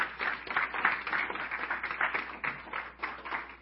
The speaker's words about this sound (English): So if you are joining the church today, I would like to welcome you up front, all the adults. Yep, y'all can clap.